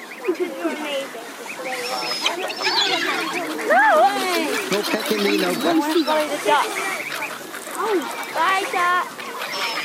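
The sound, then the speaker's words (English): A flock of geese honks near park water, their calls loud and overlapping in a constant, busy clamour for the whole stretch, with no pause in the noise. “Just brushing up all this goose stuff.”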